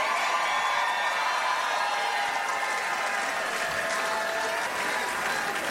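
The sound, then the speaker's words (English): A large crowd at the election night party of the winner of the Maryland governor race cheers and applauds as the race is called, in a dense, steady roar of clapping and shouts, loud and sustained throughout with no pauses. “And a crowd at his election night party was electrified when the race was called in his favor.”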